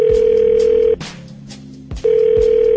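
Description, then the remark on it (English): A steady, loud telephone tone after a call hangs up, sounding for about a second, cutting out briefly, then resuming in a repeating on-off pattern with no voices. “I'm going to come over there and slap both of y'all for playing these games and hanging up the phone.”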